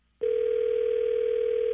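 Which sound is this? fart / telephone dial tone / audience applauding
telephone dial tone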